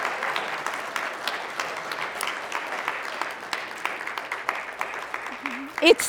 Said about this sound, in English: Can I have a round of applause for that? Thank you.